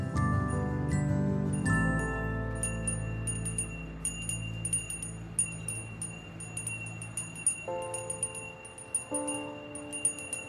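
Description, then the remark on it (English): A Salvation Army hand bell rings steadily for charity outside a place of business, its quick, repeated metallic strikes layered over sustained ringing tones that swell and shift a few times, with no voices. “For decades, the Salvation Army has stationed themselves outside places of business and rang a bell.”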